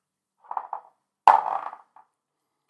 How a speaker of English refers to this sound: Roll your d20. D20.